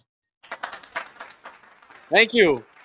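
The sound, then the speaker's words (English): A short Riverside applause sound effect of scattered, patchy claps runs for about a second and a half, fairly soft, then a louder voice speaks briefly as it fades. “Put the Riverside claps on it.”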